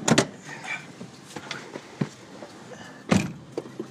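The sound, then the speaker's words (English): A car seat slides backward inside a vehicle, with a few clicks and rustles and two louder thumps at the start and near the end, with no talking. “You may want to move the seat a little backwards.”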